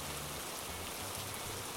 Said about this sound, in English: Then the water fell heavy and heavier